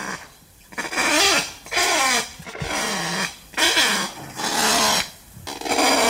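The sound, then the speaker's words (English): A kakapo, a flightless parrot, gives a series of harsh, raspy squawks, about five loud bursts in an irregular rhythm with short pauses between, with no talking. “At 5 pounds, it's the world's heaviest parrot. But being heavy and flightless doesn't stop a kakapo from getting up a tree.”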